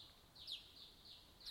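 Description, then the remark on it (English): Birds call in the background: a steady stream of high, thin chirps, punctuated by a couple of sharper, louder calls. They sound quiet, and no one speaks. “Can anyone tell me what these birds behind me are currently saying?”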